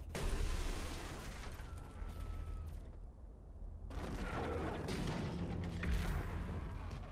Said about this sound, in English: Just the, like, the booming sounds in this room are terrifying. And the screams. And then there's little pew-pews.